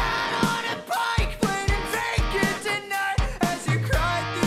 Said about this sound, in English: And it's got such a unique sound to it. It's kind of punky, but has like a poppy kind of feel to it. I'm a fool for shaky vocals like that. That like breaking rasp. Yeah, it's not screamo, but it's like close. That emotion, dude.